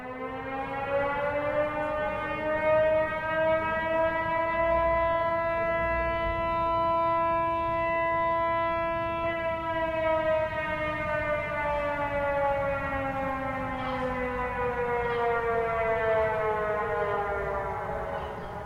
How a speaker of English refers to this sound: The forecasting system also allows the city to sound sirens a couple hours before the tide waters peak. This is what they sound like.